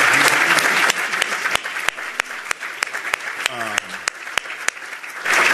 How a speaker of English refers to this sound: So first thing I'll say is, can we give this group of panelists a big round of applause?